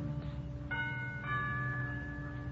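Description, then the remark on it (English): A doorbell at the front door of a villa rings in a sustained electric tone as someone leans on the bell, with bright overlapping chimes entering twice and ringing steadily over a constant low hum, fairly quiet. “I move across the road, push open the heavy iron gates, hurry up the path to the front door of the villa, and I lean on the bell.”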